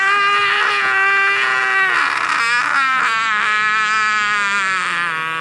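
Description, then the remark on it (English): A shrill, continuous electronic scream from a toy figure called Screaming Pete, loud, wavering in pitch without pause for several seconds, with no talking over it. “So what he does is he's just going to keep screaming.”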